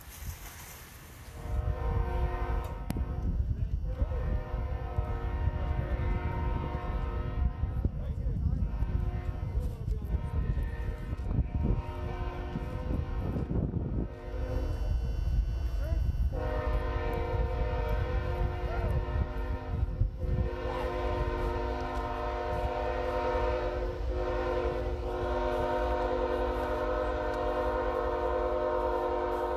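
A train rumbles past without stopping while its horn blares in long, sustained blasts, the tonal horn cutting in and out over the heavy rolling noise of the cars for the whole stretch.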